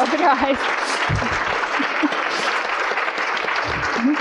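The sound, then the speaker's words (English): A sustained round of applause from a crowd for a group of panelists, dense steady clapping at an even loudness for several seconds, with faint voices and a brief cheer or call mixed in near the start. “And let's give a big round of applause for all of our panelists.”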